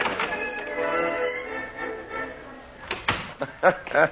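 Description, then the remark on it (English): A door opens and shuts amid a low, steady background hiss, followed by a few short, clattering knocks and brief voice-like sounds near the end. “Just open the door behind you”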